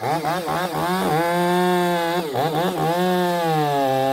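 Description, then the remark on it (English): Chainsaws roar loudly and continuously as a wildfire hand crew in California cuts a sequoia tree, training to climb trees and cut off dead, beetle-ravaged limbs; engines rev up and down as they bite into wood, the whining pitch sliding and surging throughout with no talking. “With the chainsaws running, this team, members of the Pilot Rock Hand Crew, is learning how to climb trees and cut off dead, beetle-ravaged tree limbs, and how to completely take down giant redwood trees, a necessary skill while battling the wildfire”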